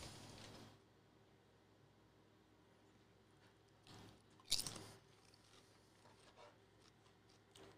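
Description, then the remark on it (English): Crisp crunching of Japanese eel-flavored chips with savory eel, salty roasted seaweed and sweet soy sauce flavor being bitten and chewed, with a few sharp bursts of crackle standing out among quieter mouth sounds and no talking. “Enjoy the savory eel, salty roasted seaweed, and sweet soy sauce flavor in these tasty, crunchy, and uniquely Japanese treats.”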